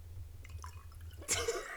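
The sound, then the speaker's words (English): Wine pours into a glass, a bright splashing gush that starts abruptly near the end after a quiet stretch of low background hum, with a few faint drips beforehand. “You should do ASMR, just pouring the wine into the glass.”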